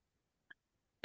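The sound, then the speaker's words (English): A short, faint catch of breath is followed by a sudden loud cough from a person who is sick, breaking an otherwise quiet moment with no one talking. “Oh my God, are you still sick? And like coughing?”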